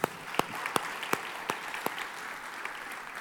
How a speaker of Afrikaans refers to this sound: Kom ons gee julle vir hulle lekker hande klap.